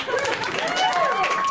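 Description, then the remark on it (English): A crowd claps in a dense, steady patter of applause, with a voice rising over the noise throughout. “Yeah, clap it. Clap it, bop it.”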